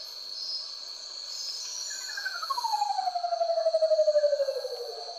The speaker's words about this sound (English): But the most remarkable call of all belongs to the curl-crested menacode. It kinda sounds like a UFO landing, or something.